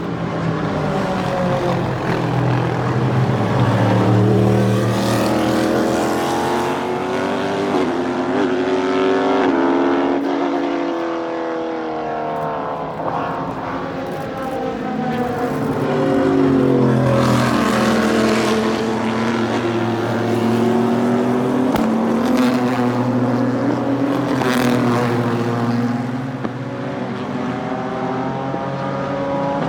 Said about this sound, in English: Now what we'll do is we'll give you a bit of car noise, break it up a bit